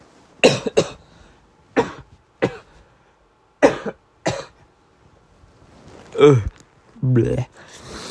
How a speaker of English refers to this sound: I'm about to cough, so sorry.